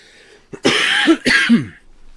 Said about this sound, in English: No, I hear shit. I hear you coughing. Yeah, I'm sure you fucking probably do hear me coughing.